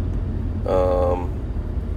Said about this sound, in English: Sorry, I'm navigating some traffic, so I might get distracted from talking because I don't want to wreck. No, I'm just paying attention.